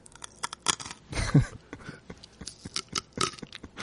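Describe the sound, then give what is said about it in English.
Crisp, wet crunching of someone chewing cucumber, with irregular bites and crackles and one louder crunch partway through, heard alone with no talking. “you can chew your cucumber.”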